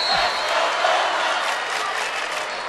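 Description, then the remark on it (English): A loud home crowd at a volleyball match roars and cheers continuously, a dense wash of voices and clapping without pause for a few seconds. “Belmont crowd trying to get him back into it.”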